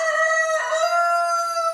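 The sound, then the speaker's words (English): A rooster crows loudly at a fire evacuation shelter full of livestock, one sustained, strained call holding steady for nearly two seconds with no other sounds around it. “the shelter was sparse with humans but full of livestock. Apparently, a lot of people have been raising chickens during the pandemic.”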